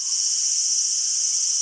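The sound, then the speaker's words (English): A loud, steady cicada buzz drones on without a break, a dense high-pitched whine filling the air with no other sounds. “You know, the big buzzy flying bugs that live underground as nymphs and then pop up as adults and make a really loud chirp or buzzing noise?”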